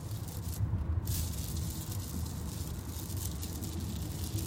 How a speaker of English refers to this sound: Okay, we got a little bit of rain hitting now. Hold on.